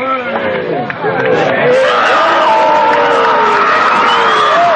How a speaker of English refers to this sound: Do you hear the screaming? Yes.